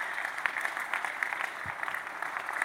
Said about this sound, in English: You're clapping in the second house right now.